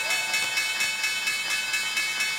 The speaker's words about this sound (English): There's the opening bell, guys.